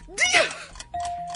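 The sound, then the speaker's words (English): A trivia quiz timer's bright electronic ding chimes out, then settles into a steady, sustained tone that rings on to the end, following a brief burst of noisy, sweeping sound. “The timer gets me.”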